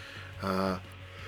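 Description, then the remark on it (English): A short, voiced yawn rises briefly out of a quiet background with a steady low hum, lasting under half a second before fading back down. “I worked last night, so I'm yawning.”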